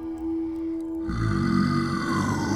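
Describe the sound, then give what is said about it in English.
A steady low hum gives way, about a second in, to a loud, deep, rumbling growl of creatures (wendigos) in a cave that rolls on with a rough, menacing texture until the end. No one speaks. “A growl drifted towards us, deep and threatening and accompanied by shuffling and barks.”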